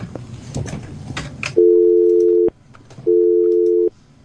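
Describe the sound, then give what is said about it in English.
A burst of crackly line noise from a dropped phone call gives way to a telephone busy signal: two loud, steady electronic tones, each nearly a second long, separated by a short pause. “Hey, is something going wrong with my fucking phones?”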